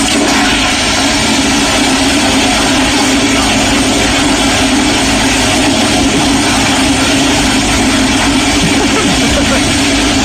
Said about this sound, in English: Still going. What the? Calm down a bit. And the flush is complete. Wow. That's like as much water as a tub. Yeah. No wonder there's a water shortage. That one toilet. That is a 21-second toilet flush.